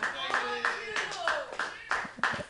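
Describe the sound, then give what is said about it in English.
An audience claps in a fairly steady rhythm of sharp, bright hits at moderate loudness, with a faint voice murmuring underneath. “Do you guys, a round of applause.”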